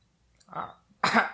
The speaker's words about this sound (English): And I just like cough up dust. A small rock.